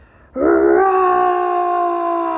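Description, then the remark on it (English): A human voice imitates a lion's roar: one loud, sustained growling cry that starts abruptly, rises slightly in pitch, then holds steady for about two seconds with strong rough harmonics. “And then he roared very loud.”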